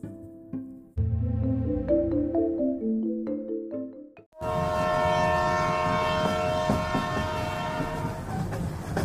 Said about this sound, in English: I'm writing to you from a train that is taking me on a beautiful journey from one city to another.